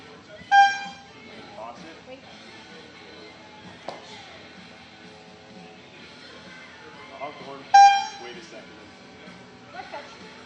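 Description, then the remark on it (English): Two short, loud horn honks ring out about seven seconds apart over a murmur of background voices and outdoor noise, each blast bright and brassy before cutting off abruptly; the honks are signals during a trial, one for the throw and one to send. “They give you a horn, and then you throw it. And then they give you a horn to send it. I'm going to honk, but don't send it.”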